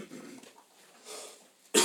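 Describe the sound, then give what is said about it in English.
A person coughs a few times, starting with a muffled throaty cough, then a harsher one, and ending with a sudden loud, sharp cough. “Excuse my coughing.”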